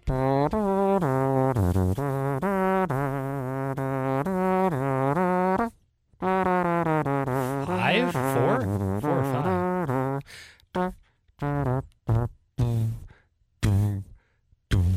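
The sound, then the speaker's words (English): Someone imitates an air horn with their voice: a long, loud, buzzy blare that wavers in pitch, then a string of short, choppy honks with gaps between them. “How was that air horn? That was pretty good, wasn't it?”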